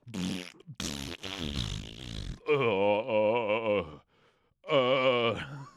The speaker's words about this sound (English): Can everyone stop farting?